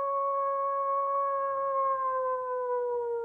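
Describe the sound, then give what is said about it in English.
A person howls like a wolf, holding one long, steady, fairly loud note whose pitch sinks slowly over about three seconds, with no other voices or sounds around it. “You brought out the wolf in me.”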